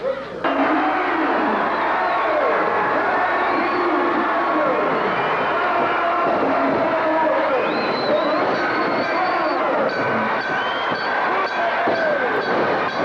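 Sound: wrestling crowd cheering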